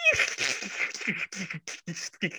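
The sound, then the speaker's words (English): A voice imitates the Chidori chirping lightning effect from Naruto, a lightning-hands technique whose name means a thousand birds: a loud, hissy, crackling buzz with high chirping tones, starting as a sustained burst and breaking into choppy, stuttering pulses. “Hope you like that sound effect because you're going to hear about it”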